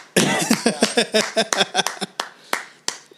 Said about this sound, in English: that's what claps look like on the soundboard.